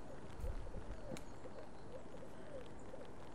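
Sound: birdsong outdoors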